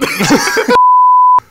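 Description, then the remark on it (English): A single loud, steady censor bleep tone lasting just over half a second, cutting in right after a brief burst of voice and ending abruptly. “Just beep this.”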